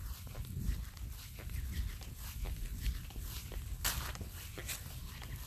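Flip-flops squeak and slap in a steady walking rhythm across wet grass on a misty morning, each step a short sharp crackle over a low rumbling background, with no talking.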